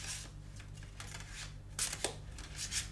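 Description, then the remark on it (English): A deck of tarot cards is shuffled before a card reading, with repeated soft papery riffles and slaps over a low steady hum, no talking. “And I'm just going to shuffle them a little bit.”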